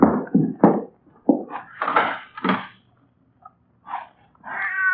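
A cat yowls in a series of drawn-out, wavering cries, loud, broken by short pauses, with a few sharp knocks near the start and no talking.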